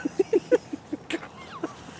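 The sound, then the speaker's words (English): A dog makes a quick run of short, low huffs, about eight in two seconds, soft and evenly paced with a faint whine, and nobody talking. “Goofy dog.”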